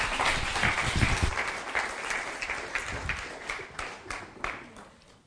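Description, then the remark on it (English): A crowd breaks into sustained applause, many hands clapping in a dense, crackling wash that is loudest at first and gradually thins out over about five seconds. “Give him a round of applause, then.”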